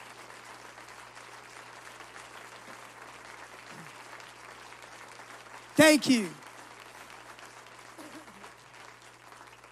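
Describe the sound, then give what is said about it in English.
A church audience at a service claps steadily in sustained applause for a volunteer from start to finish, with a single voice briefly speaking over it partway through. “Would you give a round of applause”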